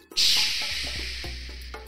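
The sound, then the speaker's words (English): A steady, bright hiss of rain starts abruptly and keeps falling, with a few separate drops tapping through it at uneven intervals. “Drip, drop, drip, drop. The rain began.”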